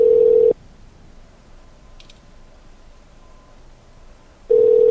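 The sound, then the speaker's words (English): A phone rings with a steady electronic tone, loud, on an incoming call from an unknown 386 number: one short burst, about four seconds of near silence, then the ring starts again. No one speaks. “Better answer. Unknown phone number.”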